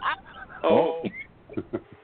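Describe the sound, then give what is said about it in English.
Harsh, strained coughing from a woman that verges on retching: a loud, croaking gag early on, followed by several shorter, choppy hacks and gasps. “Sounds like she's coughing so much she's puking.”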